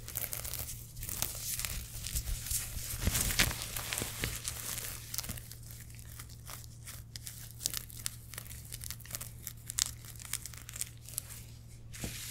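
Steady fabric scratching and crinkling, like stiff clothing being rubbed and handled during a bikini try-on, with dense crackly rustles and a few sharper bursts throughout, continuing for about twelve seconds with no talking.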